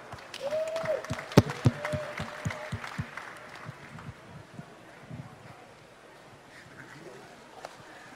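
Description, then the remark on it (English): An audience bursts into applause for Dana White, with scattered claps and a brief whistle, loudest in the first few seconds, then thinning into a softer, steady patter as the crowd settles. “Give a big round of applause for Dana White.”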